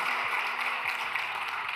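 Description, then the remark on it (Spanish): An audience at Numa Church applauds God, a steady, dense wash of many hands clapping that holds at an even level throughout, with no voices rising above it. “Vamos a darle un aplauso fuerte a nuestro Dios.”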